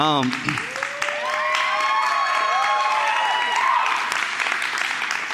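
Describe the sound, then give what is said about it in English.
A church audience claps steadily for the band for several seconds, mixed with loud cheering and rising, wavering whoops and shouts from many voices, the noise staying full and even throughout. “Y'all almost had enough courage to clap for the band, which I appreciate.”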